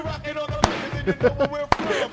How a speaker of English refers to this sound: Can I clap? Stop clapping.